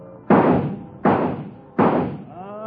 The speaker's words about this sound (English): Three shots for quarter. Knock the birdies down. Knock them all down. You win a baby doll.